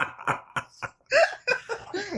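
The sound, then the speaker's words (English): A dog named Odie makes a few short, guttural burp-like bursts, then lets out drawn-out, squeaky yawns whose pitch rises and falls, fairly loud with no talking. “He's burping and yawning.”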